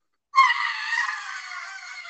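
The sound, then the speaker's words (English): A person imitates the screech of a bat recoiling after biting down on armor, with one shrill, raspy, sustained cry. It starts abruptly after a short silence, stays loud, and holds for almost two seconds without words. “The bat goes to attack you, bites down on the armor, but just chips a tooth off of it. Recoils again, screeches.”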